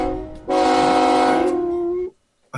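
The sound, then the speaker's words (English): A single loud, steady, brassy train horn blast sounds for about a second and a half, then cuts off, followed by silence and the start of another sound. “Pain train!”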